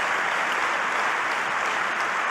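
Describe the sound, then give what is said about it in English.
A crowd at a speech on school safety applauds steadily, a dense wash of clapping hands that stays loud and even from start to finish with no voices breaking through. “Let's clap for that, you stupid bastard.”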